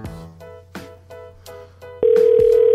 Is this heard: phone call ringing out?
yes